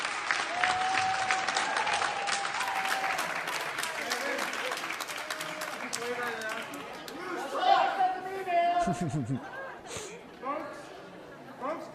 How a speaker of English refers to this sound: This is after he's like, no clapping. And then they respond by clapping even more because fuck him.